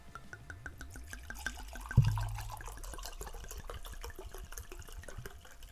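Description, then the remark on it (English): Wine is poured into a glass in a steady stream of gurgling liquid, with a soft knock partway through. No voices are heard. “Now, before I go into it, man, go ahead and pour that wine up, please, good sir.”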